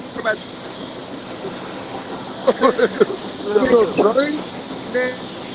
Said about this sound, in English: It sound like that nigga next to some train tracks, bro. I hope you get that same, bro. I'm on the train. I knew it.